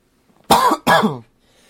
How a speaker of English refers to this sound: So if you hear coughing, it's most likely from me. I'm sorry about that.